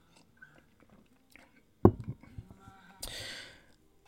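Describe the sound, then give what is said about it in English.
A drink is sipped with a short sharp clink and a few soft swallowing sounds, followed by a breathy exhale of relief; no talking. “And I remember, excuse me while I drink a sip of drink.”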